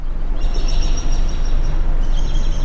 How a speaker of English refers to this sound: A recording of birds chirping plays from a small corner of SUNY Plattsburgh's art museum. Could be birds anywhere, but you know, it happens that they were recorded at Roxham.